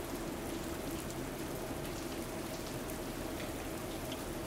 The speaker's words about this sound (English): The white noise of the rainfall is soothing as you hear it tapping on the roof of the station and the various surfaces around.